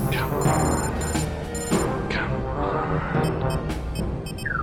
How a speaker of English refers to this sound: All right, Skipper. Power's restored. Here come the salvage shuttles. Charging plasma cannon.